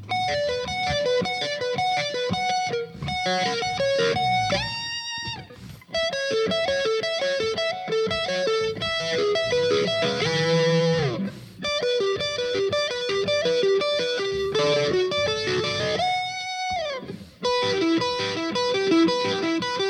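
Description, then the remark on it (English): A distorted electric guitar played through a looper plays a harmony line, one part playing chords high on the neck and the other low, layered melodic phrases repeating with bright, gritty sustained notes and occasional bends, loud and continuous with no talking. “...to throw my distortion and loop out this first one.”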